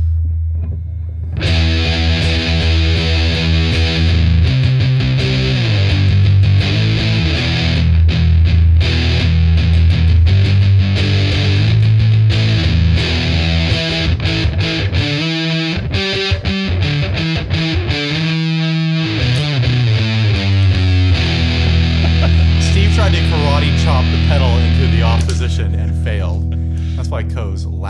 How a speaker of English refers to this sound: So basically, I mean, we'll do the Eviltone first because it's pretty straightforward. Pi style, Big Muff style fuzz.